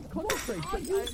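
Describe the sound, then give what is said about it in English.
A sudden crash of equipment being smashed and glass breaking, one sharp burst followed by scattered clinks, with voices talking loudly over it. “They're smashing all the equipment.”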